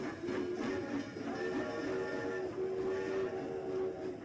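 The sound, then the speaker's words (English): A rapid train rushes past, a loud, continuous rumble with a steady droning whine of tones riding over it for the whole stretch, with no voices present. “When such vapour as rose to my height from this rapid train had passed me, and was skimming away over the landscape, I looked down again, and saw him refurling the flag he had shown while the train went by.”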